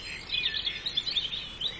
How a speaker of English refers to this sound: Almost all of the … albums are laced with bird songs recorded by Lush Cosmetics founder Mark Constantine.